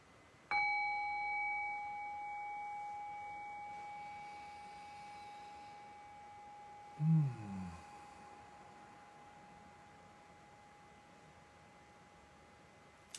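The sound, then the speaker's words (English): A single meditation bell is struck once to begin a guided meditation, its clear, pure tone ringing out and slowly fading over many seconds, with a soft low thud partway through. “And I'll ring the bell and I'll guide us in.”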